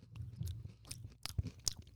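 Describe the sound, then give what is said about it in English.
Someone chews a snack of about five gummy candies, with soft, squishy bites and small crunchy clicks repeating unevenly for two seconds. Nobody is talking. “We'll get to that in a second after I'm done chewing.”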